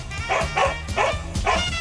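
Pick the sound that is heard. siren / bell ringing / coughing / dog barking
dog barking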